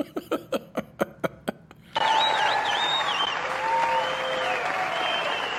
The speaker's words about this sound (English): Be honest with you, when they were standing up at first and they started showing the people, I was thinking they were cheering for the Will Smith slap when he slapped Chris Rock or something.